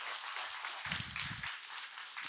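An audience claps, a dense and steady wash of hand claps lasting the whole clip, with a brief low thump or rumble midway through. No one speaks.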